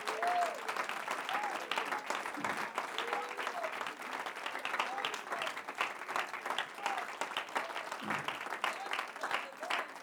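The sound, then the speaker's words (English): A large audience at a church service in Bendale, Mississippi claps hands unto the Lord, steadily and continuously for the full ten seconds, a dense wash of many hands with faint voices mixed in beneath the applause. “So let's clap our hands unto the Lord.”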